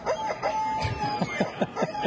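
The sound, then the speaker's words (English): A chicken sound effect with rapid, repeated squawking calls, about eight in two seconds, fairly loud over a faint steady hum. No one speaks. “And, you know, when you talk about loving chicken...”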